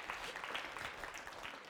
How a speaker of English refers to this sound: I mean, give the Lord a hand clap of praise, right?